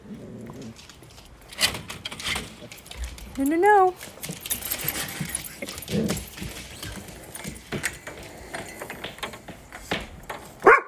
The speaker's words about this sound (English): Actually, I think I need to even shut the door. The dogs are going crazy.